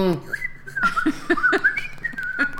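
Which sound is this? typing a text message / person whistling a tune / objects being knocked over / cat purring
person whistling a tune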